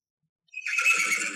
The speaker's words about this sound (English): We hear a delighted neigh in the distance.